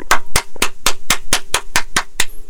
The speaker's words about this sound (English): I'm going to pause now for a moment to applaud the writer of that ad.